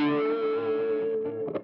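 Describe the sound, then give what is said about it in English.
A heavily distorted electric guitar chord rings out loud, played in brazen (distortion) mode with reverb turned all the way up, sustaining with a thick, buzzing tone before a brief scratchy strum near the end. “Bold is overdrive and brazen is distortion.”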